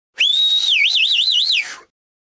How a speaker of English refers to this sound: We whistle to show our appreciation, at a concert, for example.